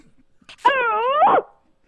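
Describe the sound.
A girl from Dallas imitates a dog barking, giving one drawn-out, wavering bark-like cry, fairly loud, with a faint click just before it and quiet afterward.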